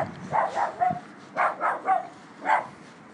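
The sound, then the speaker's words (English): A dog barks outdoors on an estate at night under a crescent moon, in two quick bursts of three yappy barks, then a single bark, against a quiet background. “That is not my dog”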